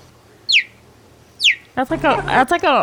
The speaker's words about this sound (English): All right, here's the cheetah again. No. Play the cheetah again. Sounds more like a hawk, doesn't it?